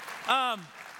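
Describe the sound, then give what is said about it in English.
A steady wash of audience clapping runs throughout, with a single voice rising over it in a brief, loud, falling cheer midway before the applause carries on. “yeah, we can clap for that. We can clap for that for sure, because it is.”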